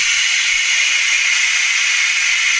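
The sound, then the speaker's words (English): Pneumatic brakes on an aircraft release as they are turned off during shutdown, air flooding out of a valve in a loud, steady rush of hissing that holds at an even level for the whole stretch, bright and airy with almost no low rumble. “Big hiss from the pneumatic brakes when I turn the brakes off.”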